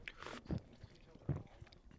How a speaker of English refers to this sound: I can't gulp quietly.